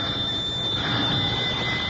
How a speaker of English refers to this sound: rang Miss Mamie's old-fashioned doorbell.